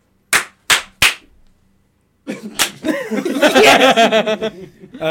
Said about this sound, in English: Yeah, let's do a clap.